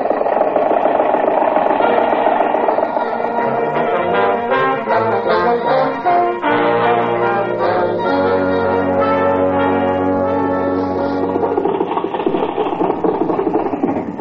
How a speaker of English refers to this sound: Confound your stinking motor car! Useful vehicle if you have to slow down almost to a standstill every time you see a horse.